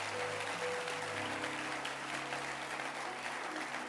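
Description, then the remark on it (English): A church audience claps their hands to celebrate the Lord in a steady, dense wash of applause that holds at an even loudness throughout, with a low sustained tone humming underneath. “Can you clap your hands and celebrate the Lord?”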